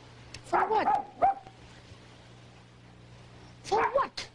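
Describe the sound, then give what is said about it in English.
A small lapdog yaps in the background of a video clip in two quick bursts, a cluster of high, sharp barks early on, then a pause and another short flurry near the end, over a faint low hum. “Well, the best part is clearly the little lapdog barking in the background.”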